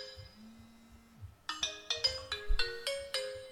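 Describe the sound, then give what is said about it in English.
A bright electronic phone ringtone plays a quick melodic run of chiming tones, preceded by a soft low hum, clear with no one speaking. “I got to answer the phone, so the power of editing will take over.”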